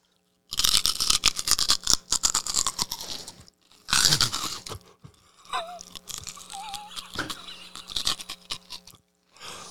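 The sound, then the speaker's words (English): Loud crunching and chewing of raw celery, with bursts of sharp, wet crackles and brief pauses between bites, plus a faint squeaky noise in the middle. “Celery takes more calories to chew.”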